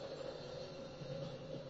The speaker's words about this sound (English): What's happening? Why is there a train? It's a truck train. Truck train. Chugga chugga chugga chugga.